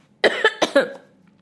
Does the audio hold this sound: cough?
yes